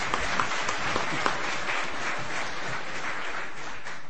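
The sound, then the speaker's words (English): A crowd applauds steadily for about four seconds, a dense, even patter of many hands clapping at moderate loudness with no voices on top. “He's give him a little clap.”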